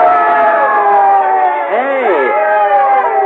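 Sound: crowd cheering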